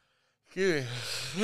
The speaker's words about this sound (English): Yawn, right? Not because you're boring. It's just midday slump, right? Mid-morning slump.